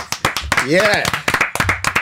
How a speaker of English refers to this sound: Yeah, guys, a round of applause